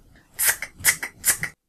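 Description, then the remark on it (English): A voice imitates scissors cutting as a vocal charades clue for the word "cut", with three crisp, hissy snips in a steady rhythm, each a sharp breathy burst followed by a shorter clipped one, fairly loud with no words. “The correct answer is cut. Sounds a little like scissors, right?”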